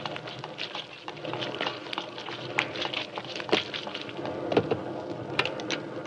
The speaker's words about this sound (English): Good Lord, it's pelting with rain.